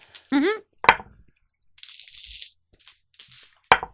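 A set of fancy dice clatters onto a table in a few sharp knocks, with brief hissing rattles between them and a short vocal sound near the start.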